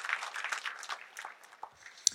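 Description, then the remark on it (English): An audience claps together to give the Lord a hand clap, a dense patter of many hands that thins out toward the end, with one sharp final clap standing out. “Come on, put your hands together. Give the Lord a hand clap.”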